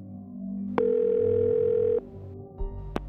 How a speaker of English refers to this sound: Some they recognized, but there was one number that kept appearing on the bill again and again. They had no idea who it could be. So, the Levys picked up the phone and dialed.